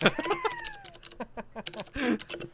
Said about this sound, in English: Sorry, you can hear my really loud mechanical keyboard.